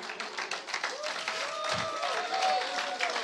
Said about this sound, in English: That's a weak clap.